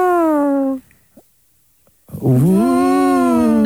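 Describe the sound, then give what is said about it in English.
During an animal-guessing game, a person imitates a blue whale, voicing two long, loud, wavering moans separated by a brief silence, the second sliding up and then holding steady. “What is that? Blue whale.”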